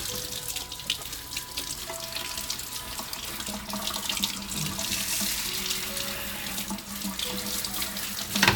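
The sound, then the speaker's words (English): A kitchen faucet set to shower mode sprays water steadily onto a handful of tiny potatoes in a strainer in the sink, a continuous hiss and splash with shifting gurgling tones as the stream hits the basin, with no talking. “Okay, I'll put my sink into shower mode, so.”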